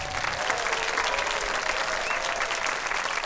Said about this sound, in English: A round of applause to our choir's artistic director